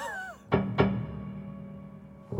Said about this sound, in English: All kinds of wonderful percussive effects. And what's happening there? You're stopping it from ringing? I'm dampening the string, but I have the sustain on, so when the hammer strikes it, it makes that wonderful sound.